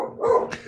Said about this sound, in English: Oh, there's a dog.